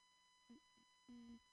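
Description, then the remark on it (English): A woman hums two steady, low notes into a microphone, a short one followed by a longer held one, quiet against a faint electrical hum. “this is me humming into the microphone so everyone at home listening on the radio knows I didn't die, didn't drop dead.”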